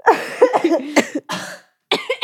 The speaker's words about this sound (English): We're all coughing machines.